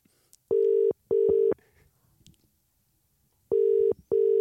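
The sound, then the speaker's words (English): A phone ringback tone of an outgoing call that goes unanswered sounds in a clear, loud double-pulse pattern, two short rings, a pause of about two seconds, then two more. No one speaks over it. “Oh, that's too many rings.”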